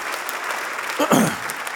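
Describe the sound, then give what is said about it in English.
An audience claps together for the 1,645 Thanksgiving baskets given that week, a steady wash of applause, dense and sustained, with a brief voice-like swell rising through the clapping near the end. “And we can clap for that. Let's clap for that.”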